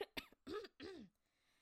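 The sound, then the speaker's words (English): A person coughs four times in quick succession, harsh and close, the last two bursts longer and more throaty, followed by quiet. “Okay, I think I have to cough again.”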